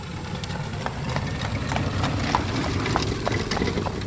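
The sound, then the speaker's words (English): Steady clip-clop of a horse's hooves on pavement as a horse and buggy rolls past on a road in Burgholz, a brisk rhythmic trot over a low background rumble. “My cousin Eli just went by in his horse and buggy”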